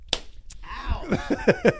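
hand slapping a person

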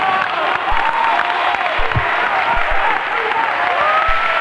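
audience clapping and applauding

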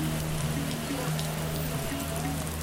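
rain falling on surfaces

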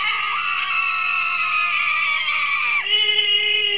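woman screaming

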